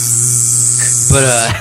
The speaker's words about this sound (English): Oh, shit, we're getting tons of distortion now.